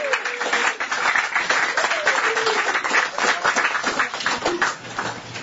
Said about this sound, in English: So if you guys are brave enough, you don't have to, but we would like to welcome you to Communitas. So raise that hand up in the air. Welcome. Everyone give a clap.